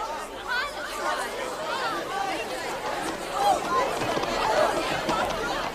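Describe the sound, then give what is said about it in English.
A dense crowd murmurs and chatters all at once, many overlapping voices forming a steady, fairly loud hubbub with no single speaker standing out. “Have you got other supporters in the crowd to back you up?”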